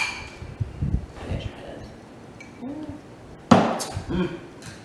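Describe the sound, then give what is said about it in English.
A single bright clink of glasses of sangria mimosa tapped together in a toast, ringing briefly, with soft murmuring voices before and after it. “I made you some sangre mimosa. Ooh. All right. Let's cheers to this.”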